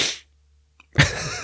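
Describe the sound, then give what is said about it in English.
A quick nasal sniffle, a sharp breathy hiss that trails off, following a brief noisy breath and a moment of near silence. No one speaks. “Little sniffle there.”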